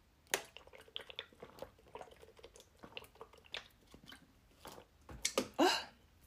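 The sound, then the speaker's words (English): Quiet mouth sounds and small liquid clicks, building to a couple of louder slurping sips near the end as someone drinks tea, with no talking. “The sea is so good, y'all. I keep forgetting about this thing.”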